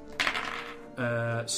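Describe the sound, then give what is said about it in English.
A quick burst of dice clattering and tumbling across a hard surface, fairly loud, followed by a brief sustained voiced sound. The dice are rolled to hit in a tabletop game: a black die for a sword attack and two others for unarmed attacks. “black dice is with the sword, and the other two are unarmed attacks.”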